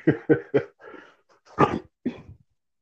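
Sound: small yappy dog barking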